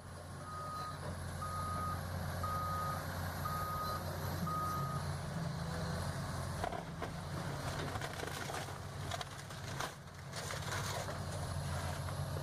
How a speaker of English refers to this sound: The year is 1964. The sounds of demolition equipment and smashing wood are ever so present.